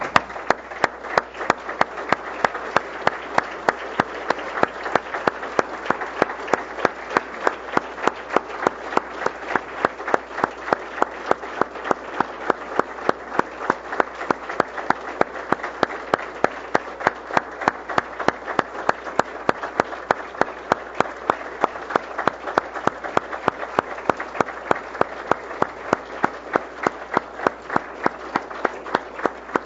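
A crowd applauds steadily for the full half minute for Canadian veterans and service members, with dense, even clapping and sharp rhythmic claps cutting through the broad wash of sound. No one speaks over it.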